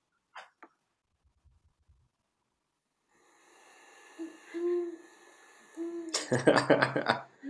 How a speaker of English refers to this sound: This is an owl, of course. I don't know specifically what type of owl.